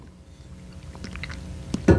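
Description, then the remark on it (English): Someone takes a sip of hot cinnamon tea: soft wet mouth noises build to a short slurp and swallow near the end, with no talking. “Except the recordings are going to have recordings of me sipping tea.”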